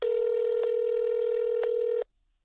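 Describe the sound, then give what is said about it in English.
A telephone tone rings out as one steady, unbroken electronic beep lasting about two seconds, with two faint clicks partway through, then cuts off into silence, as a business's phone number that is out of service is called. “But the phone number listed for the business was out of service.”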